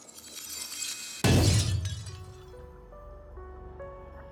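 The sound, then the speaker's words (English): A sudden, loud crystal shatter bursts in after a moment of low ambience, a crystal cracking and breaking apart in a bright crash, followed by lingering tinkling tones and a sustained eerie hum fading out. “And the crystal begins to crack, and beams of black light begin to pierce out, hitting different creatures, both skeleton and fey, and they just turn to ash as the crystal shatters.”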